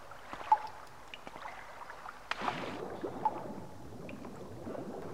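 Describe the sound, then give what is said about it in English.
Scattered water drips echo in a cave lake area, then a steadier wash of lapping, splashing water takes over and continues at a moderate level as someone goes down into the water. No one speaks. “It's a drippy in cave lake area.”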